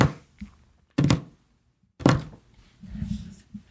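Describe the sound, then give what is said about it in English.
A pencil taps a hard surface as ASMR tapping close to the mic: three crisp, loud knocks about a second apart, with a few softer taps and a low rumbling thud in between, and no talking. “Listen to my pencil.”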